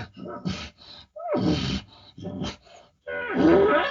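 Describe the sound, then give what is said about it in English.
A voice imitates elk calls in a series of short, rough bursts: breathy grunts and mews, then louder, strained squealing screams with rising and falling pitch, separated by brief pauses. “I mean, you just make all these little sounds and then just scream behind it again. And all it does is sell him that you're really an elk there, because hardly ever hunters, they just don't do it.”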